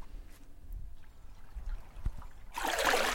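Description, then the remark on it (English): A seine net drags through shallow water in the Giacomini wetland, pulled by National Park Service staff to gather tidewater gobies, with low sloshing and soft dribbles, then a loud, broad rush of splashing water surges up near the end, with no voices. “pull a seine net through the water to gather the gobies.”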